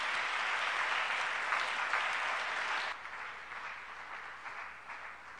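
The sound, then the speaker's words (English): An audience applauds its Sunday school teachers in a dense, steady wash of many hands clapping, loud for about three seconds before easing to a softer, thinning patter that continues to the end. “Let's give our Sunday school teachers a great hand.”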